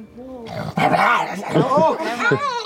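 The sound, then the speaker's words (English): Someone imitates a sad, hungry, whimpering wolf with their voice, making fairly loud whiny tones that waver up and down in pitch for a few seconds without a break. “That sounds like he's a hungry wolf.”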